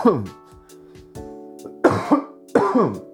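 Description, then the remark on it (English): A harsh coughing fit, a delayed cough after smoking hash: strained, raspy throat sounds build into several loud, rough coughs in quick succession, with no talking in between. “I must have had a delayed cough from the hash.”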